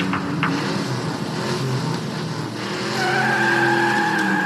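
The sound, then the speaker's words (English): A car revs hard and its tires squeal as it drives backwards through the glass doors of a diamond store, with a couple of brief sharp bursts near the start and a rising, sustained whine toward the end. No one speaks. “We see footage of a car driving backwards through the glass doors of some fancy pants diamond store.”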